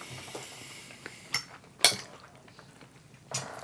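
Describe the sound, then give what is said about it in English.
Scattered metallic clinks of cutlery against plates during a meal of steak, pasta and Brussels sprouts, a few sharp bright taps spaced irregularly over a low murmur of background noise, with no talking. “Where we're just chewing, some clanking.”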